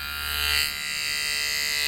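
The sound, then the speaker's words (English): Electric hair clippers buzz steadily for two seconds while cutting a man's hair, a constant mechanical drone with a bright, high-pitched whine and a slight swell in intensity midway. “Here comes the buzzers.”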